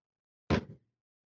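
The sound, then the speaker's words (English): A heavy die is rolled for damage in a tabletop role-playing game, dropping onto a hard surface with a solid thunk, then rattling briefly before stopping, a single roll in otherwise quiet surroundings. “Dice has some heft.”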